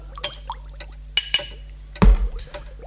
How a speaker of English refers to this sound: Next, we add 1 jar of the dolmio pasty sauce. Give that a stir.